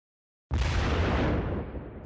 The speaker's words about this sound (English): Now hit that explosion. Give me that explosion.